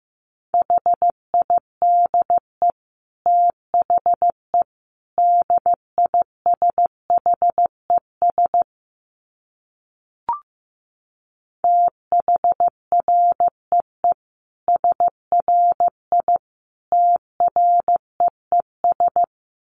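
Morse code sent at 15 words per minute: a steady mid-pitched beep keyed into short dits and longer dahs, broken by a pause with a single click halfway through. No voices.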